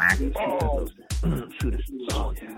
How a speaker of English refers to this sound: Quack.